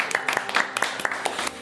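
A short burst of applause: a small group clapping in quick, irregular bursts of sharp claps at moderate loudness, lasting under two seconds.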